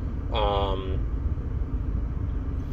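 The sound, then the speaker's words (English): A passing train gives off a steady, loud, low rumble that fills the whole stretch, with a brief high, tonal squeal or horn-like note near the start. “Oh, fuck me, the train.”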